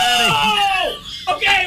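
A man lets out a loud, drawn-out yell with a wavering pitch, close to the microphone, breaking briefly before a final shorter shout, after his trivia answer of 14 to a question about how many years Michael worked at Dunder Mifflin is ruled wrong.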